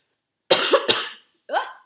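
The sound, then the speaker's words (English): A fairly loud burst of three rapid coughs, followed after a short pause by one softer, rougher cough, with no talking in between. “enjoy the coughing.”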